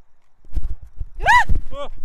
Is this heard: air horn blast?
no